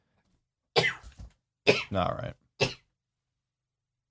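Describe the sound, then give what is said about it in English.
A sharp sneeze bursts out amid a few short throaty vocal sounds, with a brief spoken phrase in between, then quiet. “Bless you.”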